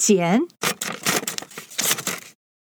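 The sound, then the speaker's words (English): A short voiced word, the Chinese word for scissors, is followed by a series of crisp, papery snips and crunches of scissors cutting paper for a craft, in several quick bursts. “剪刀 And we're going to cut.”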